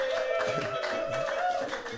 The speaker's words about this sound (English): everybody, clap your hands right now, everybody.